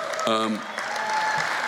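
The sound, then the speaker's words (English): An audience applauds in a steady, dense wash of clapping that holds at an even level throughout, with a short voiced call rising briefly over it near the start. “And if those of you didn't applaud and haven't been there, I'm not shitting.”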